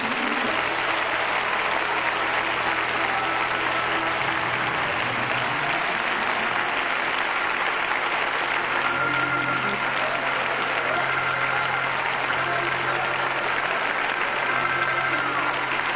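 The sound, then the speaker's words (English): An audience gives the Lord a clap offering, clapping together in a dense, steady wash of applause that holds loud and even for the whole stretch, with a faint low hum beneath it. “Let's give the Lord a clap offering right now.”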